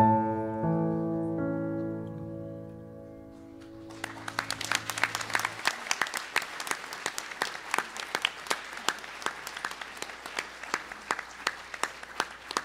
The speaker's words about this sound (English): Let's stand as we give a round of applause. Let's stand as we give a round of applause to our procession.